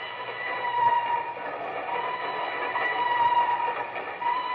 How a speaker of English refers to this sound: The time near midnight. The place, Nigeria, West Africa. Two men stand on the swaying observation platform of a train which winds its way across a yawning chasm between two mountains.